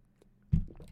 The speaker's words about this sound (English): I just took a huge gulp of water. I heard that. Yeah, got thirsty.